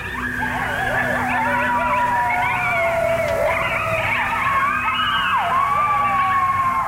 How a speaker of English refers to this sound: Okay, so I think we all know what that is. And those coyotes or wolves are howling at the moon.